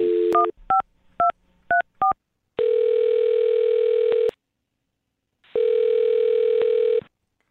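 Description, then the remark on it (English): A phone number is punched in with five quick touch-tone beeps, followed by two long, steady ringback tones separated by a pause, as the radio show Brooke and Jubal in the Morning calls a man. No one speaks. “All right, well, I'm going to dial his phone number right now and get ready to blow his mind, okay?”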